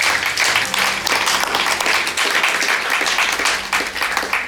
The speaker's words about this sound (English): Now, there's probably people here that have prayed that for the first or last time, so can we just give everyone a round of applause that's made that decision this morning?